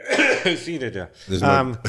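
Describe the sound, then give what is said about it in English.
A voiced throat clearing in two rough, gravelly bursts, the second stronger, with a low hum between them. It is fairly loud and fills most of the short clip. “sorry, I'm clearing my throat so much.”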